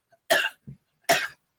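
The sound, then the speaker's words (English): Two sharp coughs about a second apart, with a short low throaty sound between them and no talking; the cough is from an upper respiratory issue, not COVID. “And let me explain my cough.”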